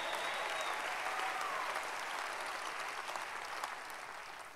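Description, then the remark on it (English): A crowd applauds steadily for several seconds, a dense, even wash of clapping with a faint whistle and scattered cheers mixed in, fading slightly toward the end. “Let's begin to cheer each other on.”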